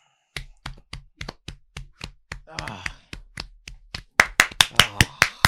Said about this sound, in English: I just clapped.